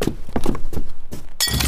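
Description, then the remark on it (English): A hammer smashes a grape: a series of heavy, dull thunks land in uneven rhythm, ending with a louder, brighter crunching hit. No voices are heard. “I mean, it's a little heavy-handed, but hammers can in fact do the job.”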